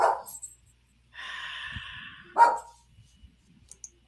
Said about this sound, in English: Dogs outside are barking.